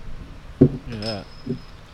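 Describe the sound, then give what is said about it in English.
A twist-off cap on a bottle of Yuengling Oktoberfest beer gives a sharp glassy click, followed by a brief voiced exclamation, a thin lingering ring, and then a second, softer click. “We need a bottle opener for this one. Oktoberfest. Oh. No, they're twist tops.”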